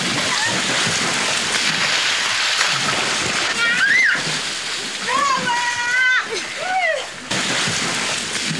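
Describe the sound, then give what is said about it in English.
Water balloons burst and splash in a steady, noisy spray of water, with a few high playful squeals rising over the splashing midway through. “Let's throw out some water balloons.”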